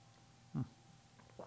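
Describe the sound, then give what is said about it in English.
A single quick sip of coffee, a short slurp amid quiet, followed moments later by a fainter small sound. “Let's have a sip of coffee real quick.”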